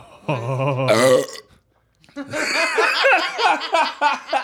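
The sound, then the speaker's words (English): A single loud, long, low-pitched burp rumbles out for about a second, then after a brief silence people burst into sustained laughter. “you just cannon projected out of your mouth.”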